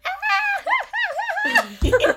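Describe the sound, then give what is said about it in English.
A person mimics a dog's whiny, howling vocalization, with the voice sliding up and down in pitch for about two seconds before a short burst of breathy noise. “And also the one movie going, also that dog that's like, who's here?”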